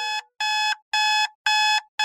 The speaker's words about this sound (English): The pulsing beep gently nudges my brain out of a weird dream involving asparagus and French wine. I laugh quietly as my right hand flops around the nightstand in search of the snooze button.